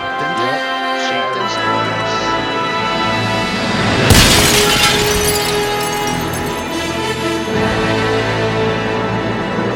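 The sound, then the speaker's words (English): A baseball, hit off a pitch for a home run, smashes through a clock in one loud, bright shattering crash partway through, its scattering debris fading quickly against a steady bed of sustained tonal music. “He knocks it right through time, right through the clock.”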